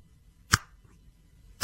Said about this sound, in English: Can you snap your fingers loud? Oh, yeah. Fairly.